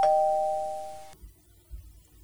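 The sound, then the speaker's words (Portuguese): A single electronic doorbell chime rings out as a technician arrives at a lady's residence, a bright sustained tone with a clear onset that holds for about a second and then cuts off, leaving faint low rumbling behind. “O técnico chega à residência da senhora e toca à porta.”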